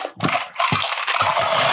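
A big handful of dice clatters and rattles across a hard surface in several overlapping bursts, a loud busy jumble of small clicks and scrapes with no one talking.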